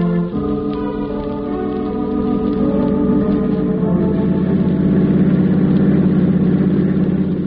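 A car engine idles, kept running while the car is parked by a shed at Pier 12, with a steady, loud, low humming drone rich in overtones. Its pitch shifts slightly partway through, then holds. No one speaks.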